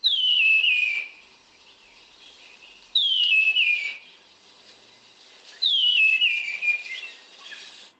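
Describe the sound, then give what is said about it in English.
A spotted ground thrush gives three high, thin whistled calls, each a descending slurred note lasting about a second, spaced a few seconds apart against a quiet background. “Okay, so now we've got the sound of the spotted ground thrush.”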